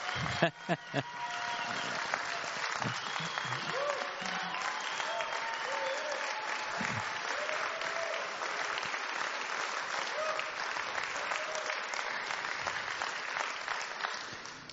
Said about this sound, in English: They just need an applause right now.